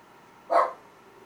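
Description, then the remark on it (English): A single sharp dog bark rings out mid-clip, short and fairly loud, against a quiet low background hum with no talking. “I don't know why our dog was tripping, but now he's in here with us in the garage.”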